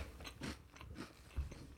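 Someone chews and crunches food, a series of crisp, irregular bites with short gaps between them. The crunches are fairly quiet, with no talking over them.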